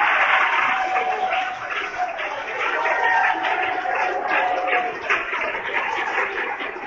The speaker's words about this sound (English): Don't sit there if others are clapping their hands. You clap with them. It's orchestrated from heaven.